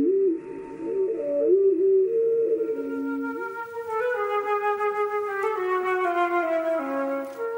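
Hermit thrush song, heard as low, sustained flute-like tones that glide and step between pitches with rich overtones, flowing continuously for several seconds at a steady moderate volume with no talking.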